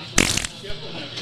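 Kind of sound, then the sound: sound effect, fart noise sound effect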